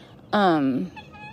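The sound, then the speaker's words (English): A rooster crows once, loud, a brief harsh call that slides downward in pitch before quieter background sounds take over. “I told you he was about to crow.”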